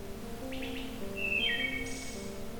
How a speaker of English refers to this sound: Songs of species such as this wood thrush can be heard echoing through this natural auditorium throughout spring and summer, far away from the cities and busy highways.